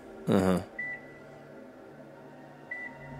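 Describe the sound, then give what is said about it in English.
Two short, thin electronic beeps, used to line up recordings, sound about two seconds apart over a low steady hum, following a brief loud voice-like burst at the start. “I like this beeping so far. It's going to help line it up real nice.”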